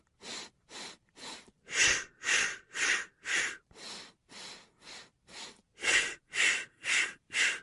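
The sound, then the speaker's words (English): Rhythmic breathing in a breathing exercise: a run of four quick, sharp nose inhales followed by four forceful mouth exhales, repeated in a steady pattern of about fifteen breaths, with no talking. “Now, you're going to inhale through your nose, as you probably heard, and exhale out your mouth.”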